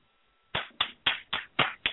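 A pair of hands claps six times in a quick, steady rhythm, each clap sharp, following a brief moment of near silence with no one speaking.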